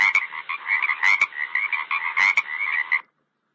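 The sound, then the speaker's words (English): Frogs croak in a dense, steady chorus, their raspy calls pulsing rhythmically for about three seconds before cutting off into silence. “There at the river, he managed to find some big, green, slimy frogs.”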